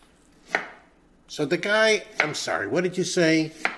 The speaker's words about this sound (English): The next night, I made dinner. I was chopping vegetables with a long, sharp knife.